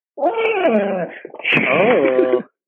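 dog whining

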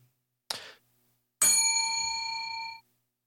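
bell ding

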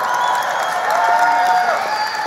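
audience applause and cheering

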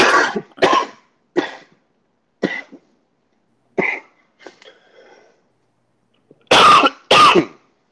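choking cough

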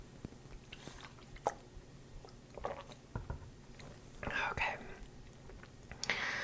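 speaker drinking water

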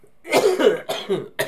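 person coughing

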